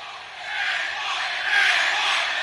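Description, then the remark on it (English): A large wrestling arena crowd roars and chants for Benoit together in a steady, loud wall of voices, swelling slightly toward the end, with no single speaker standing out. “Crowd chanting for Benoit yet again.”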